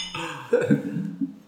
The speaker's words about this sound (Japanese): はい、若干ね、今片手にビールはあるんですが、少し固めのムードなんで、もう一回ぐらい乾杯しましょう。